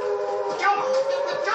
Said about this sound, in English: I used to have a terrible fear of these horrible sirens.